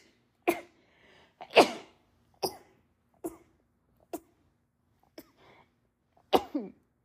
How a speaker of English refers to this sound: I'm gonna sneeze, guys, I'm sorry.